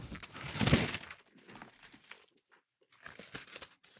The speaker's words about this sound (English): Something about opening presents, like tearing stuff, makes me feel like, because like I just tore the sheet of paper, yeah. So it'll never be the same again.